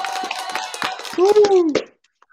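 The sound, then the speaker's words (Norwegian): Brief applause of sparse, evenly spaced claps mixed with voices and a rising-then-falling whoop, all cutting off abruptly after about two seconds. “Da tar vi en applaus for det.”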